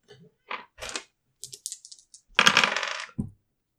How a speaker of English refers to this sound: Make a roll for your resistance check. Resistance? Yeah. Where? You roll percentile dice.